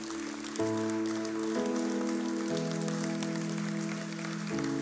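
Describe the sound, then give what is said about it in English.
A crowd claps steadily in a dense, crackling wash of applause for people called forward to be prayed for, while sustained keyboard chords play underneath and shift every second or so. “Yeah, come on, give them a great round of applause.”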